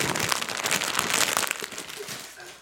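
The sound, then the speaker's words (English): Loud crinkling of a plastic wrapper being crumpled close to the microphone, a dense crackly texture that continues for a couple of seconds and then eases off. “I'm waiting for you to crumple that up because that's loud.”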